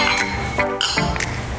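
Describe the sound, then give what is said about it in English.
Wine glasses clink together in a toast: a few bright, ringing taps in quick succession with a lingering chime, fairly loud, without any talking. “Raise a glass. Cheers.”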